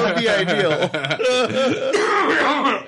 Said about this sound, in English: I'm over here coughing.